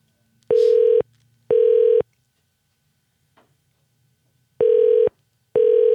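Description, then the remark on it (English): A telephone ringback tone purrs in paired bursts, two short rings, a pause of silence, then two more, while a call to the Landmark River Oaks Theater is being transferred. Steady and clear, with no voices. “Please wait while I transfer Oaks, your call.”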